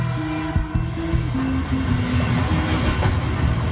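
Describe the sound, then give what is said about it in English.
A train heading out of Paris toward the small town of Auvers rolls steadily along the rails with a loud, continuous rumble, a low metallic hum and a couple of sharp clanks near the start. It never lets up. “He boards the first train out of Paris.”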